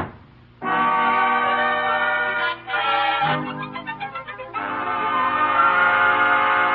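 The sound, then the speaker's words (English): A train's horn blares in long, loud sustained chords, briefly breaking and wavering in the middle before holding steady again, with no voices. “He's on his way to the railroad station to get the 6 o'clock train for Albany.”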